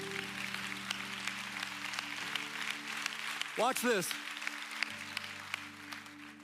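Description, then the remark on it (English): An audience at a Sunday service at Go Church claps throughout in a steady, dense wash, while a voice speaks briefly over it and a low sustained tone hums underneath. “Oh, come on, if we're gonna clap.”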